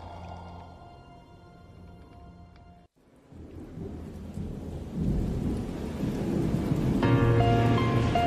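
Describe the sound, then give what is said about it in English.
Rumbling thunder rolls over a steady wash of rain, swelling louder toward the end, with faint sustained musical tones at the start and again near the close. “Let it rain.”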